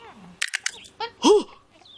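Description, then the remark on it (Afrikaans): A parrot mimics speech in a few quick, squawky, voice-like syllables, fairly loud, ending in a rising, strained cry. No one else talks. “ek wil ook een papegaai hê wat goeder so mooi achter my aan sê.”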